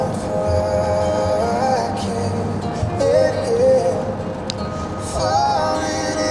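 Steady road noise inside a car cruising on the freeway at 70 miles an hour: a constant low rumble and broad roar with faint whining tones drifting in pitch, continuous and fairly loud, with no one speaking.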